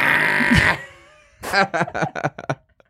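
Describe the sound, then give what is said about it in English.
A voice mimics a distressed donkey that is being beaten after biting a man: a loud, strained, sustained bray, then a rapid series of choppy, rhythmic honking bursts that break off abruptly. “The couple heard the distressed donkey sound, and they came outside.”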